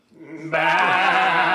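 A single sheep bleats, a loud, wavering baa that swells quickly after a quieter start and holds steady to the end, with no other sounds around it.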